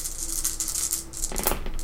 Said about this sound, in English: I now have 7 dice that I'm going to re-roll. And I'm going to roll the small dice now because my big dice betrayed me.